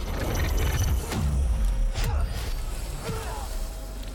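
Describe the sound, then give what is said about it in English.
A harbor ambience: a steady low wash of water with wooden creaks and groans, and a few gull cries rising over the rumble. “Because it sounds like there's a harbor nearby. Like you can hear seagulls.”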